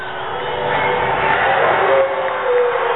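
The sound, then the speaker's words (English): A baseball crowd boos a strike call on a 3-2 count, with Burke pitching for the Padres to Clint Barmus, on a cold day; a loud, steady wash of many voices holding a low, sustained roar for the full few seconds, swelling slightly midway. “Crowd disagrees with that strike call.”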